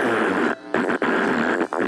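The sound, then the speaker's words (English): A loud, buzzy, sputtering fart sound runs for about two seconds, broken by a short gap midway and a couple of brief dips, with no talking over it. “And every time I do a fart, it'll sound like they're rolling over in the grave.”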